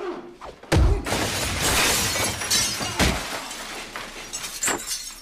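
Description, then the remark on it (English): Glass shatters in a loud crash during a fight scene in a film, followed by a sustained spray of tinkling shards and a second heavy smash a couple of seconds later, with no voices. “And to have good texture, glass, Venetians, paper.”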